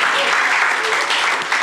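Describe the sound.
A crowd gives a big round of applause to a man who has come up to help the speaker, a loud, steady, dense, continuous patter of many hands clapping at once, with scattered voices mixed into the noise.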